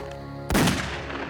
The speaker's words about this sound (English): Abisalov fired a single shot that struck Sidney in the back.